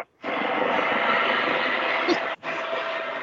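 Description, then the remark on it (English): A full-scale helicopter flying right outside a window gives a loud, steady roar that fills the whole clip as a dense, continuous engine and rotor wash, cutting out for a split second before resuming at the same level. “I got a full-scale helicopter flying right outside my window right now.”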